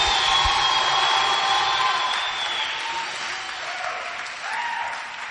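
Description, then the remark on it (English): A large crowd claps steadily in a dense, continuous wash of applause, loud and sustained, with faint cheering tones rising through it before it gradually eases off. “Why don't you give Jesus a mighty clap offering wherever you are?”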